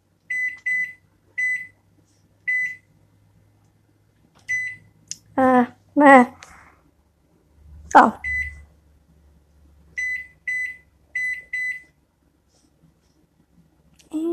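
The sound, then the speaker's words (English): Short electronic beeps from a kitchen appliance chirp in quick pairs and triplets, the button presses of its clock being reset after a power outage, with a person's brief voice breaking in between. “Gonna reset the clock because we just had a power outage.”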